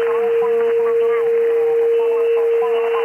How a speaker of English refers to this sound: The notch filter can be very effective, particularly when trying to remove interfering tones. Listen to this steady tone.